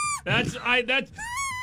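Someone fumbles with a duck call that was mailed to them: a thin reedy note, then three rough, buzzy quacking blasts, ending on a long, wavering high squeal, moderately loud, with no talking.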